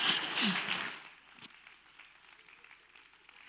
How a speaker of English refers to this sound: And listen, my nose is running, so can y'all applaud one more time so you don't hear this?